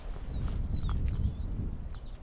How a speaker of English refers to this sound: Oh, hang on. Those birds flying over, they sound like siskins to me.